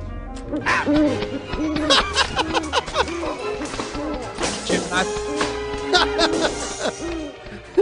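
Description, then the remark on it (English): Owl hooting repeats over and over in short, wavering, loud calls, mixed with voices and busy background noise. “I said Big Al's Pizza, not Big Owl's Pizza.”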